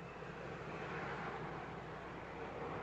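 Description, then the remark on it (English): A crop duster airplane's engine drones steadily, a broad continuous rumble holding an even level throughout, with no voices over it, as the plane dusts where there are no crops. “That plane's dusting crops where there ain't no crops.”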